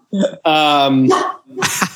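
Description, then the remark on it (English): A dog barking at its own reflection lets out three loud barks in quick succession, the middle one stretched into a long, whining yowl before two shorter, sharper yaps. “He's barking at his own reflection.”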